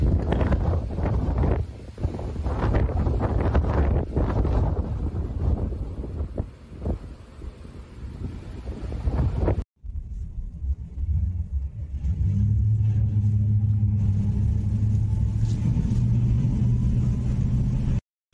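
storm wind

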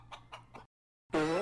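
chicken clucking sound effect

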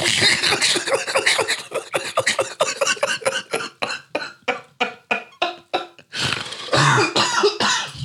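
coughing and throat clearing

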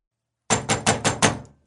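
knocking on a door

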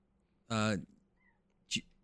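cat meowing

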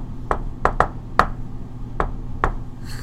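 knocking on a door

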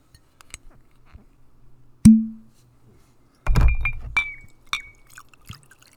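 drinking glass clinking

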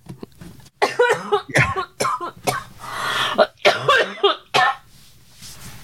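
coughing fit

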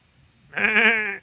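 sheep bleating

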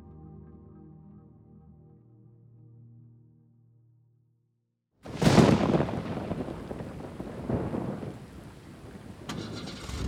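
car engine starting

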